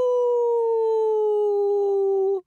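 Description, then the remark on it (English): A wolf watchdog howls an alarm: a single long, sustained howl with a steady tone that slowly drifts downward in pitch, loud, ending abruptly after a couple of seconds with no talking. “A wolf watchdog raised the alarm and the farmer came running towards the orchard.”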